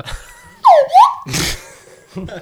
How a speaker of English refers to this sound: Slide whistle.